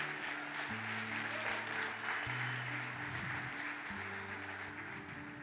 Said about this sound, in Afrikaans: Ek sien een ou wat die Here aangeneem het. Een ou, ek sien net nommer 1, so kom ons klap vir hom hande.